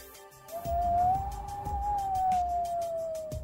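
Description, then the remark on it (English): A steady, eerie howl of wind on a beach holds one whistling pitch, rising slightly and then easing, over a low rumbling gusty roar. It is fairly loud, with no voices. “the winds began to howl.”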